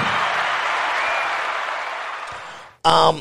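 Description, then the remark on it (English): A steady wash of clapping from an audience fills the space for a few seconds, dense and even, then cuts off as a voice starts talking. “Round of applause for that when he gets Stone Cold, go to the White House and kick him in his fucking nuts.”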